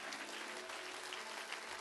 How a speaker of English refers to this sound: Clap your hands real big because God's big. He deserves a massive applause today because He's big.